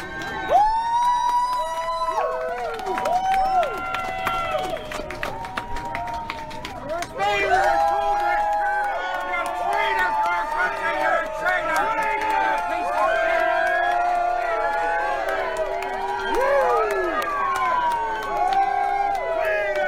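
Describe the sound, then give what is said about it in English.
A large crowd cheers and shouts as a politician arrives, some calling him a traitor and others genuinely cheering for him, many voices overlapping in a dense, loud, continuous din with rising and falling yells that never let up across the whole stretch. “So you can hear the mix of cheers here. People calling him a traitor and people like genuinely cheering for him.”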